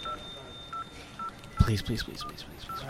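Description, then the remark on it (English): Short electronic keypad beeps repeat at a steady pace as a phone number is dialed, faint and thin, with a voice starting to talk over them partway through. “Oh, it's ringing.”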